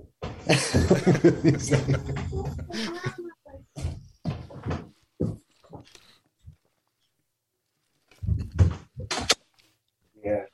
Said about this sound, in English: Man, I look like a ghost in back of you because your door just opened.